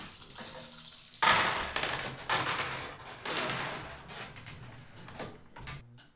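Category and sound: household object, dice being rolled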